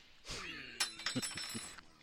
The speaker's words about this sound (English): And then drop the spoon. Yeah, because it's good. There it goes again.